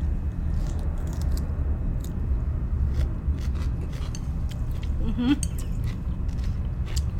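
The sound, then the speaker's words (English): Crisp crunching of someone biting into and chewing a pickle made from a garden-grown pickling cucumber, with irregular sharp snaps and clicks over a low, steady background rumble. “Tastes like a legit pickle.”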